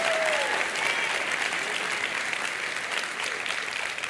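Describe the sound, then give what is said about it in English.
Steady, dense applause from a large group applauding the Lord fills the whole stretch, a continuous wash of clapping with a faint whistle near the start. “Now, if we're going to applaud the Lord, let's do it right. Let's applaud the Lord.”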